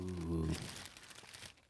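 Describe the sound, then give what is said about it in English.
Tissue paper crinkles right up against the microphone in a dense, crackly rustle that continues steadily, following a brief voice at the very start. “We got some tissue paper. Ooh, ASMR. Crinkle that shit up in the mic, bro.”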